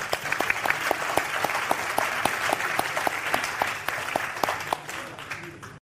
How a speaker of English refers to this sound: Please give a round of applause for our illustrious panel.